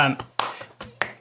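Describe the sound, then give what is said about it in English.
Sharp hand claps in a quick, steady rhythm, about five in just over a second, some louder than others, after a brief vocal sound at the start, with a low hum underneath. “clapping flat, but then sometimes clapping the bass one.”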